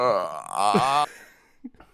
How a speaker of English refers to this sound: I'm trying to burp.